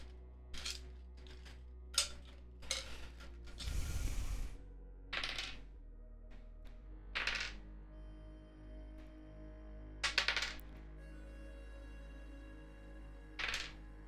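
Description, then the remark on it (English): Dice rolled by hand rattle and clatter onto a hard surface: a series of sharp knocks, one longer tumbling rattle, then scattered taps spread over several seconds with quiet gaps between. “I don't have a mouse to pick up those dice. Okay, I'm going to have to do this manually.”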